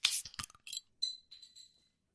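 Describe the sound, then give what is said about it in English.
Sharp cracking, fizzing bursts as drinks are opened, followed by a few bright, high-pitched glassy clinks that ring briefly and fade. No voices are heard. “She'll have a bottle of water and we'll crack ourselves our drinks.”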